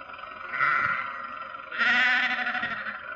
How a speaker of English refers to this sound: Confound that man with his sheep. Does he have to take up the entire road?